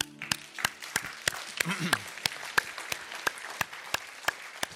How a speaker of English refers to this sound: And we clap because it is finished. It's done. He accomplished it.